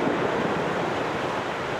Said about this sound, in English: You know, also you kind of hear the sound of waves, where you hear those actual natural sounds come through this album.